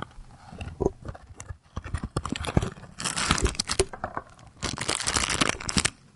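A package rustles and crinkles as it is handled, opened and closed: loud, scratchy crackling in several bursts separated by brief pauses, with no voices.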